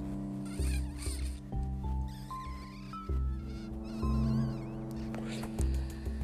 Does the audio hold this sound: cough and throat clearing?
no